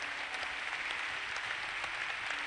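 An audience claps steadily, a dense wash of many overlapping hand claps that stays even in loudness throughout, with no voices over it.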